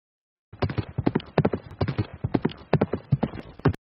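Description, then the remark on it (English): A horse's hooves clip-clop in a steady, quick rhythm, a rapid series of sharp hollow knocks that continue for about three seconds before stopping abruptly, as a rider arrives in Shelbyville, Indiana, after riding back from Flat Rock, and gets off the horse. “We see Hendricks now getting off his horse in Shelbyville”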